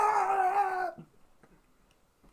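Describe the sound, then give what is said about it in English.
A voice imitates a frog with a single sustained, nasal, wavering call lasting just under a second, followed by near silence and faint soft noises. “I'm gonna imitate the frogs.”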